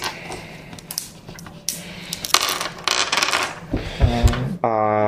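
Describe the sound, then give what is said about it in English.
Dice clatter and rattle across a hard surface in a close, busy burst of sharp clicks and taps, followed at the end by a brief steady electronic tone. No one speaks. “Sorry, so I get three dice to roll, and I've got four.”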